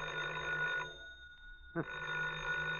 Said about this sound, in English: Oh, the phone again. You get to your feet, walk painfully across the room to the phone,